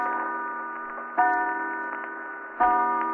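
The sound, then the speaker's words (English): A clock strikes three o'clock with resonant, ringing chimes, each new stroke arriving about a second and a half apart over a lingering hum, with faint ticking underneath and no voices. “3 o'clock.”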